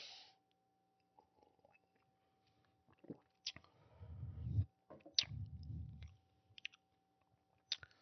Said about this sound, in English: but we're gonna take a nice little sip.